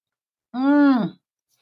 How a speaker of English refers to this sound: Oh, sorry for my out loud breathing.